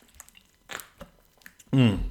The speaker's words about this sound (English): I might just have a quick sip of this water.